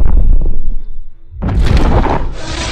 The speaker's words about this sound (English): louder than I thought she would be. That roar would blow my hair back, if I had any.